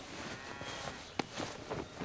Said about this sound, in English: Looks like we're not the only ones in this beautiful green meadow, doesn't it, Reader? We're surrounded by sheep. Lots and lots and lots of sheep! I did read in How to Build a Leprechaun Trap that there are more sheep in Ireland than people.